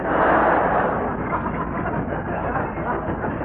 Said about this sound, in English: Oh, shut up. Them ruddy trains drive me mad.